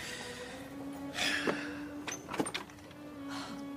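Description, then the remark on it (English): Someone fumbles at a door, with a few scattered metallic rattles and soft knocks like a key scraping at a lock, over a low steady hum. No one speaks. “Tom, what are you doing? Looking for a door key?”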